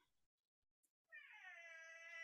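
A single long, drawn-out cat meow sounds fairly loud, starting after a second of near silence and holding steady with a slight rising pitch until the end.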